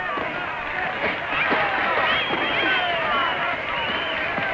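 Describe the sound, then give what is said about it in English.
A boxing crowd cheers at ringside during the seventh round of a grudge fight: a dense, steady roar of many overlapping shouting voices, loud and continuous throughout, with scattered higher yells rising out of the din. “Listen to that crowd. Do they love it?”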